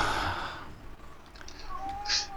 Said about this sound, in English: Hey, there's the cat to join in. You and the cat wanted to sing the bar.